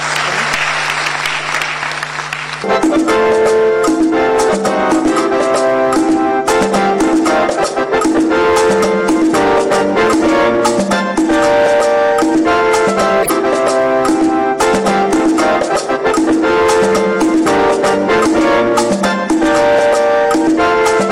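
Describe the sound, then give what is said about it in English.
An audience claps in a dense, steady wash that stays loud for about twenty seconds, with sustained musical tones joining the applause after the first couple of seconds. No one speaks. “Let's clap for.”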